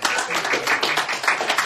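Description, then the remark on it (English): An audience claps together to give God a hand clap, a dense, steady burst of applause. Many overlapping hand claps blend into a continuous crackling roar that holds an even loudness throughout. “Hey, let's give God a good hand clap, huh?”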